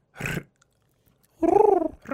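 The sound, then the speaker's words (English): A person imitates a cooing bird: a short breathy burst, a pause, then a longer warbling coo with wavering pitch, ending as another coo starts. “I think I just said cooing. I mean, you could take a cooing class, too.”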